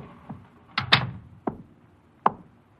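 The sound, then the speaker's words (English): An office door being shut: a soft creak, then a solid thud with rattling clicks, followed by a couple of sharp latch clicks spaced out amid quiet. “Shut the door.”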